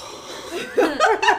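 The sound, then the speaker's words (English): A voice imitates heavy, excited breathing, the kind made while watching a play or movie: a few sharp, breathy gasps in quick succession, fairly loud, sounding almost like a short laugh. “I just kind of, like, unconsciously start heavily breathing”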